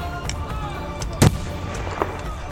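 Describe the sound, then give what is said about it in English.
Musket and rifle gunfire during fighting at a fort cracks out over a low, noisy rumble: one sharp, fairly loud shot, then a fainter report a moment later, with no voices. “The shouts and screams of fighting stopped, along with the sound of musket and rifle fire, the moment she walked out of the fort.”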